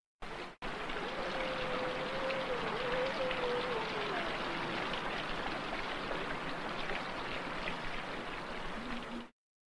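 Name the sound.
flowing mountain stream water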